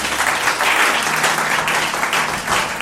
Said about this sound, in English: Round of applause.